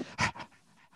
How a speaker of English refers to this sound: What's that breathing sound?